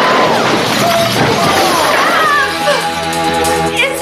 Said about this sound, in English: Back upstairs now, Wrath just comes crashing through the skylights. And now it all converges together, the two scenes.